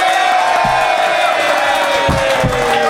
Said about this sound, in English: I would like you to applaud now. Okay. A strong faction, it could go either way.